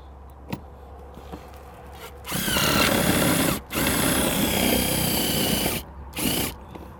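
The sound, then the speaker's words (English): A power drill grinds into a metal base plate in three loud bursts: two long runs of a few seconds each, then a brief final spurt, with quiet pauses between. The base plate is being drilled down into an old Motosat base plate. No one speaks. “Take the feet off and use the base plate by itself and drill it down into the old Motosat base plate.”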